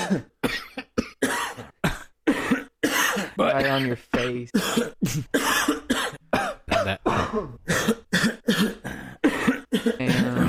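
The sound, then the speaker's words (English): A voice imitates the harsh, hacking coughs and throat clearing of people smoking pot, bursting out in rapid, uneven fits, with brief spoken words mixed in between. “So it's a lot of coughing.”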